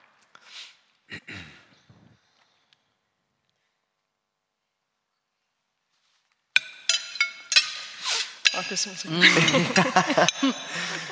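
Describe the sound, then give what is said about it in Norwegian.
A burst of glasses clinking together in a toast to a new house, several quick bright taps, followed by overlapping voices chatting and laughing in Danish after a quiet pause. “Ja, skål. Skål. Velkommen.”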